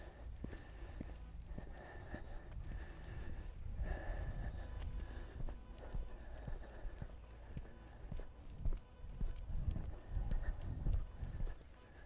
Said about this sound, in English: This is only the second day starting to walk him again after about 6 months of not. So the hills in the neighborhood here are a bit much. I haven't conditioned myself again. You can hear a lot of heavy breathing.